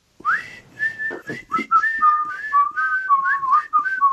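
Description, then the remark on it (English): Someone whistles the instrumental tune from the film Kill Bill Volume 1 alone, a flowing melody with clear, high notes sliding and bending between pitches in a steady, tuneful run with no talking. “I will at least once a week hum the, what is it, tune? It's like the tune from it.”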